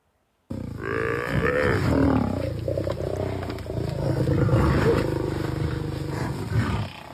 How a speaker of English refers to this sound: What was that? I think that was a lion trying to eat one of their young, and then they just kind of flipped it away.